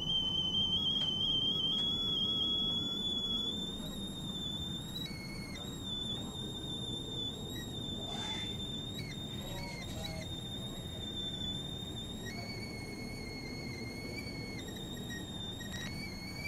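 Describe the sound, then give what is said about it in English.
A kettle whistles steadily on a shrill, high tone that wavers and steps in pitch a few times, sounding over a constant low rumbling hiss throughout. “kettle going off and the smell of Turkish coffee.”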